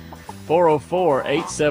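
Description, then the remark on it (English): Chickens cluck and call in a few short bursts, the voices sliding up and down in pitch with brief pauses between them. “Let's listen to the chickens for just a minute.”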